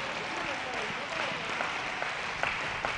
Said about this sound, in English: Oh, come on, clap your hands for the Lord this morning.